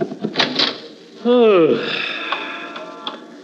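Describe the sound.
Brief muffled voices, then a door swings open with a loud, drawn-out creaking squeal that bends in pitch before settling into a lingering wooden groan and faint rustling.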